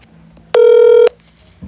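A single loud, steady electronic phone tone sounds for about half a second as a phone call is placed, clear, with only faint background noise before and after and no one talking.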